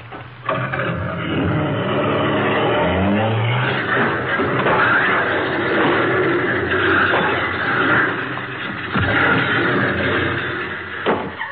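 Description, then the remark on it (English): A car engine revs up with its accelerator stuck, and then a long, loud crash follows as the car goes through the back wall of a garage, with splintering wood and clattering debris piling on through the rest, with sharp impacts near the end. “Why, he went right through the back of the garage.”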